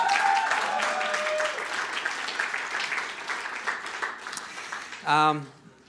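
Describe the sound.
A crowd applauds steadily for about five seconds, a dense patter of many clapping hands, with a few voices mixed in. A short vocal shout rings out before the clapping fades.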